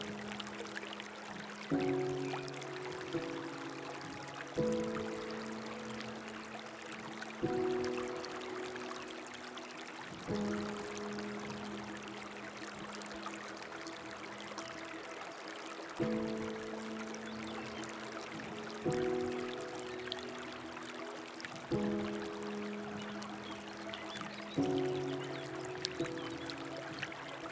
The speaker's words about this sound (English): As you listen to the sound of the flowing water, let any thoughts or distractions that arise flow down the river, and simply enjoy being present in this moment.